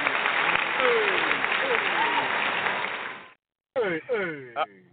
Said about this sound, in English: Give him a little applause there. Thank you.